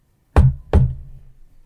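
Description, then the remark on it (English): Two firm knocks on the shut door of a captain's quarters, evenly spaced about a third of a second apart, each a sharp thud with a low, hollow ring that fades quickly into quiet. “Arthur is gonna knock.”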